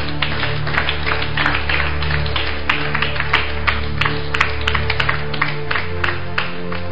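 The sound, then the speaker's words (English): A steady wash of audience applause for a lady, many hands clapping together in a dense, crackling patter that holds for several seconds over a low, constant hum. “Let's clap for that lady.”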